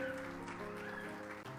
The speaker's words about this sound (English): These three will be coming on to serve the church for the next 2 years. So can we give them a welcome today and a hand clap?